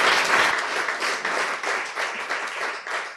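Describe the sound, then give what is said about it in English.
Sustained audience applause at an evening awards ceremony, for the award winners and nominators: a dense crackle of many hands clapping steadily at fairly even loudness, with slight swells and no voices standing out. “So could I ask you all to just a round of applause, please, for all those.”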